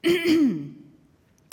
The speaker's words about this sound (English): The angel coughed.